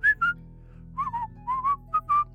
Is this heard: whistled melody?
yes